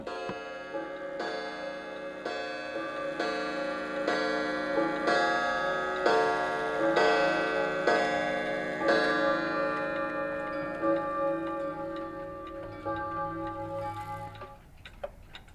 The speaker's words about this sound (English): If you look at I have a clock here in front. This is a brand new clock. This clock's not going to last, you know, 10 years.